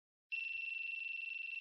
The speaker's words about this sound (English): So I don't know if you can see it or not, but if I say, listen to the beep. Then I say, GoPro, start recording.